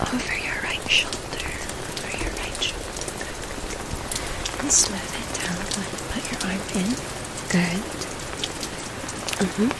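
Steady rain patters on a surface, dense and continuous, with scattered sharper drop taps standing out from the hiss. A faint, indistinct whisper may drift underneath.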